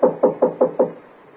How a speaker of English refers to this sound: He knocked on the door.